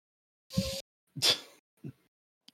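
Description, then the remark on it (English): Two sharp, breathy nasal snorts in quick succession, followed by a couple of fainter, shorter snuffles, with no talking. “Mysterious snorts.”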